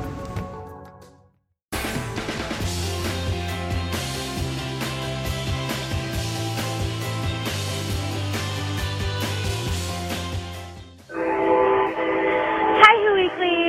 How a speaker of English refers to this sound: Sorry, there's a train in the background. I thought it would be done by now.